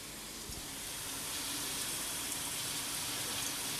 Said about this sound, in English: So they're still glowing bright red, but slightly just starting to fade as they're about to be subjected to some air pressure to cool them down, and then some water cooling. Yeah, the water is sizzling off those, absolutely steaming off those hinges.